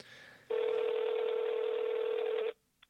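A single loud, steady telephone tone sounds for about two seconds, clear, then cuts off abruptly, leaving near silence with a faint click at the end; a phone call to speak through an interpreter.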